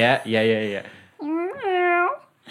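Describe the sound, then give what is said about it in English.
A person gives a drawn-out, pitch-sliding imitation of a cat's meow, fairly loud, following a short burst of low voiced vocalizing. “I mean, I want you to turn meow.”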